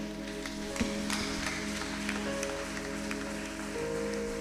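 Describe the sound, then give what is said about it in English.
A church audience claps hands steadily, the scattered claps blending into a continuous patter over a sustained, droning musical tone, fairly soft, with no one speaking. “As we are clapping our hands, please can you just bow your heads and stretch your hands towards her daddy.”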